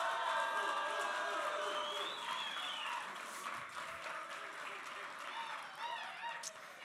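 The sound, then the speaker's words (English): A crowd cheers and shouts in a steady, loud wash of overlapping voices with some clapping, voting by cheer for the best-looking real life Christmas tree, holding for about seven seconds and easing off only slightly toward the end. “We're going to go by crowd vote.”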